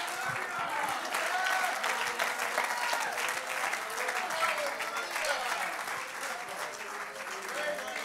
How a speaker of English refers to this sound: Clap your hands unto the Lord one more time.